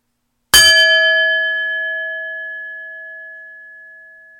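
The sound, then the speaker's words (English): A single bell is struck once for a listening exercise, giving a sharp metallic attack followed by a clear, sustained ringing tone that slowly fades over several seconds. The strike is loud, with no other sounds. “Now I'm going to ring a bell with varying tones.”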